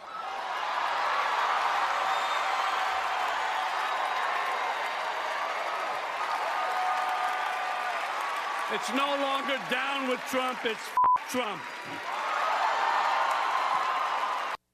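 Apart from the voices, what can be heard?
crowd cheering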